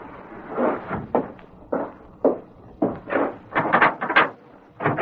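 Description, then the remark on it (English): A side door is handled: a series of knocking, rattling bumps as it is opened, then shut with a few firm thuds, with no one speaking. “Go around the side door.”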